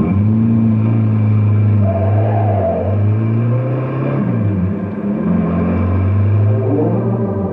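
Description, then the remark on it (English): A car engine revs loudly with a strong low rumble, pitch rising and falling as it accelerates hard and roars off, steady throughout with no voices. “But I wish you'd keep this crate down to driving speed for a change.”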